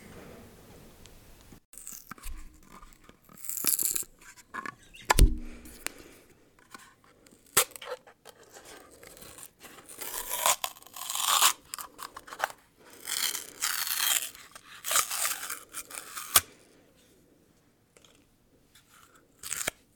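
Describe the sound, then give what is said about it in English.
Someone opening a jar of Justin's cinnamon almond butter for ASMR: irregular crinkly crackles and tearing bursts, a few sharp clicks and pops, all alone with no talking, trailing off into quiet. “ASMR, we are going to open a can of Justin's cinnamon almond butter.”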